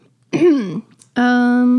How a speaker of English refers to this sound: Why did I do that when I'm doing the podcast? I feel like I have to cough a billion times. Nobody else? Just me?